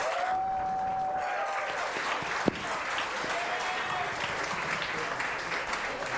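An audience claps steadily for about six seconds, a dense, sustained patter of applause with a few whoops and whistles rising above it and one sharp louder clap partway through, a show of applause from those on one host's fantasy team roster.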